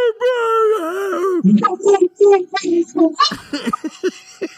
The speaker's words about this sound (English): Now, is that one of those kind of dogs that can talk? Yeah, no, she doesn't shut the fuck up usually. Yeah, that's my Nova girl.